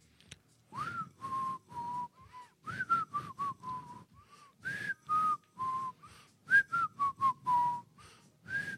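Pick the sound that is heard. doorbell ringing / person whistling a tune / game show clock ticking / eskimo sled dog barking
person whistling a tune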